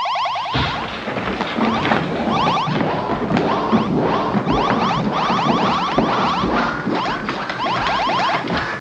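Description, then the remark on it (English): Loud electronic beeping and warbling, like an alien creature effect, rapid chirps repeating in a steady, insistent pattern almost the whole time, with a dense buzzing layer underneath and no voices. “And after a few moments, the Zarbi beeping noise starts up.”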